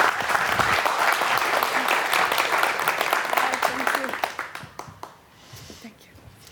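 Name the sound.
audience applause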